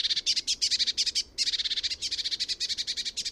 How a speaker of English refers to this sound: When a sparrowhawk comes towards my garden, I normally hear this ripple of blue tit and great tit alarm calls come before the sparrowhawk actually arrives.